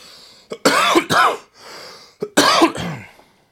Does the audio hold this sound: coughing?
yes